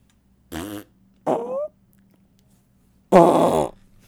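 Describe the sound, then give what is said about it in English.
Three separate fart noises break an otherwise quiet stretch: two short ones close together, then a longer, louder, raspier one after a pause. No one speaks. “Let's have a moment of silence punctuated by fart sounds in honor of that.”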